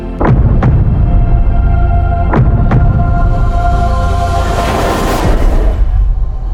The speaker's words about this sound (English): I feel her. I hear her heartbeat. So what does her heartbeat sound like?